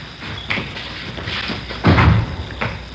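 A door is handled: a few light clicks and rattles, then a heavy thud as it swings shut, followed by a softer knock.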